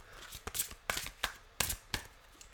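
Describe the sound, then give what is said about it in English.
Shuffling of a deck of about 75 cards, a series of quick crisp riffling bursts and soft slaps at an uneven rhythm, quiet with no talking. “So I'm just going to shuffle these.”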